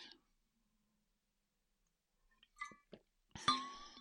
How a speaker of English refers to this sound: I just have a sip of water.